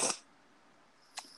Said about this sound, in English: Excuse me. Bless you. Bless you, child.